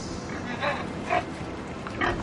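A pig grunts three times in short, snorting bursts spaced about half a second to a second apart, moderately loud over a steady background hiss.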